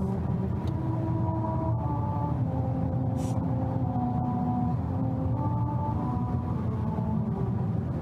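A car drives over the road at 45 miles an hour, heard from inside the cabin: a steady, loud low rumble runs throughout, with droning tones that shift pitch over it. No one speaks.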